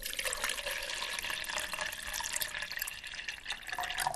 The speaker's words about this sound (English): What you do then is you pour hot boiling water in.